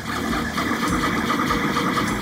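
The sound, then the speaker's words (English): A 3D printer head moves back and forth, adding layer after layer of plastic, making a steady, unbroken mechanical whir with buzzing motor tones and a low hum. It stays fairly loud and even throughout, with no voices. “The printer's head methodically moves back and forth, adding layer after layer of plastic.”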